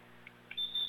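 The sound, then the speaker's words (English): A referee's whistle gives one steady, shrill, high-pitched blast before the serve in a match between the Lady Dogs and a Blanco team. It starts partway through and holds to the end. A couple of faint short chirps come before it, over a low, steady hum. “He blows his whistle.”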